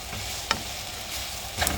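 Meat and potatoes seasoned with salt and pepper sizzle steadily in a pan, with a couple of sharp scraping clicks as they're stirred, fairly quiet, no voices.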